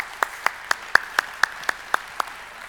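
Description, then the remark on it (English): Applause from an audience, heard as a steady run of about nine crisp, evenly spaced claps landing roughly four per second, with no talking over them. “And she's one among many, but worth applause anyway.”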